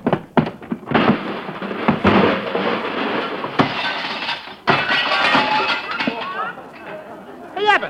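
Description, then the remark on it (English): The glass crystal of a watch cracks and shatters in sharp, bright bursts during a noisy scuffle, with loud crashes, clattering and overlapping voices, ending in a rising, wavering yelp. “He broke my watch crystal.”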